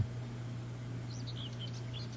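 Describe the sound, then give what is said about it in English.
Small birds chirp and tweet in short, scattered high-pitched bursts over a steady low hum, the calls moderately loud, with no voices present. “That's the chirpy birdies.”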